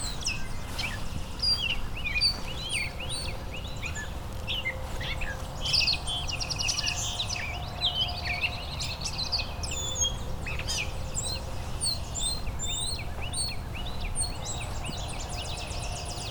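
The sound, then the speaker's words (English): A great catbird calls amid a busy chorus of other birds, with sharp chirps and whistled notes overlapping steadily over a low, constant background rumble. “Got a great catbird here.”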